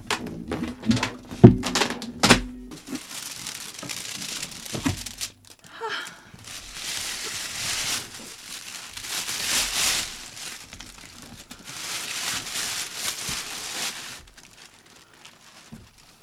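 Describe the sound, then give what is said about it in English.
Loud crinkling and rustling of a plastic bag being pulled open to unwrap shoes, coming in several long bursts with a few soft handling thumps near the start. “Oh, it's not double bagged.”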